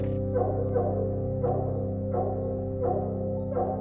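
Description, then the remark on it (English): A dog barks six times in a steady, unhurried rhythm, each bark short and clear, over a constant low droning hum that runs underneath throughout. “But the dog barks away. He barks again and he barks some more.”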